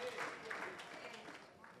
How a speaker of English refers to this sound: Holy claps.